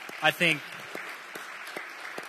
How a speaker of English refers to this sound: Hey, I don't know about you guys, but I think our worship team is amazing. Can we give a round of applause for our worship team?